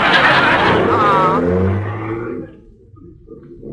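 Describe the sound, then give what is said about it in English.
A car engine roars loudly and revs with a rising whine as the driver sets off to ride into the county seat with passengers, then settles after about two and a half seconds into a quieter, rumbling idle. “Well, then move over so I can get my foot on the accelerator.”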